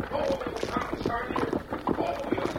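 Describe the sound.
Horses' hooves clip-clop in a steady, rhythmic patter as riders come through a pasture gate, with people talking over the hoofbeats throughout.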